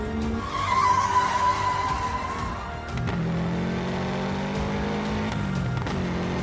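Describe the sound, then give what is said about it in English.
Car tires skid and squeal loudly in a long sustained screech as the living car Carface pivots sideways, using a pile of rubble as a ramp, followed by a second drawn-out skid with a deep engine roar underneath, intense with no speech. “As if gravity and momentum were just myths to be disproven, Carface pivoted sideways, using a nearby pile of rubble as a ramp, aiming itself at the side of a gigantic, derelict hotel.”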